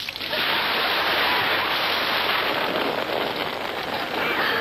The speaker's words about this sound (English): which, after pointing out what it is that he had received, then gets water completely dumped on his head. This is just a plain glass of water.